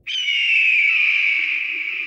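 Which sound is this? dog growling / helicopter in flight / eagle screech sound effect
eagle screech sound effect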